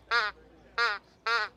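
Three loud, nasal quacks from a duck call, each about a quarter second long, blown in an even rhythm with short pauses between them.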